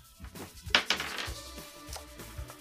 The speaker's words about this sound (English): Roll the dice! Higher is better.